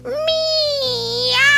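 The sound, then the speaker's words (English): A person reading a story imitates a fat cat's meow with one long, drawn-out wailing cry that swells slightly toward the end, fairly loud, with no other sounds around it. “"Meow!" cried the fat cat.”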